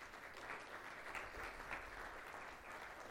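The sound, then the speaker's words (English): Steady audience applause, a dense crackle of many hands clapping at an even, sustained level for a few seconds with no voices breaking through; a round of applause for the spouses of military service members. “So if we can get a round of applause for them too.”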